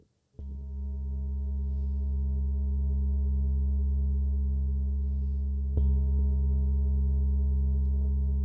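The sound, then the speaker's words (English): A strange, steady ringing tone starts abruptly and sustains for several seconds, layered over a deep droning hum, with a slight click and swell partway through. No one speaks. “Until finally, everything goes quiet. And you hear what sounds like a strange ringing sensation.”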